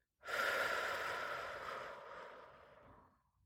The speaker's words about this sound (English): All right, now that you're settled, here's what I want you to do. Take a deep breath in. Fill all the way up, hold it, now let it out.